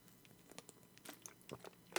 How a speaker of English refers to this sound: Ooh. I had a sip of water that was like a month old. I don't know why it's a month old. This bottle's been sitting here for a hot minute. But it tastes like a foot.